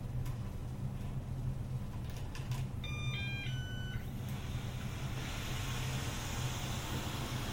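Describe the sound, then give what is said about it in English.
A robot vacuum beeps a short electronic sequence of a few stepped tones, rising clearly over a steady low hum and background noise, with no one speaking. “That was a fun beep.”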